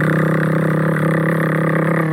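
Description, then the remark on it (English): A person vocally imitates a rotary tattoo machine, holding a steady, low, droning buzz at an even loudness for about two seconds without a break. “The traditional noisy one, which is an electromagnetic coil, and then a rotary machine, which doesn't have two connecting metal parts, so you don't have the same kind of noise. So it's like a way lower, quieter buzz.”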